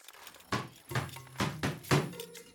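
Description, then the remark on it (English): Five solid knocks on a wooden throne room door in an uneven rhythm, each a dull, resonant thud, moderately loud, with a faint hum between them and no talking. “I shall knock on said door.”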